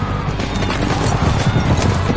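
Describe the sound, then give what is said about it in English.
Racehorses break from the starting gate and gallop in a loud, rapid rumble of pounding hooves that churns steadily for a couple of seconds, with a dense wash of noise around it. “And they're off!”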